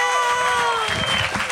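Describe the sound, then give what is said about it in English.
An audience breaks into another round of applause for a panel at a show, a dense, steady patter of many hands clapping that swells in after a voice trails off at the start and carries on fairly loud. “Let's give our panel another round of applause.”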